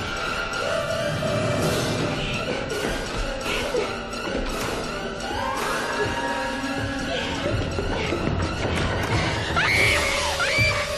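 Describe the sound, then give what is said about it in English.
An intense horror movie score plays loud and unbroken for the whole stretch: dense, shrieking strings and swelling tones, with sharp crashing accents and no one talking. The score closely imitates the Scream film score. “And the score at this point is a massively huge Scream ripoff.”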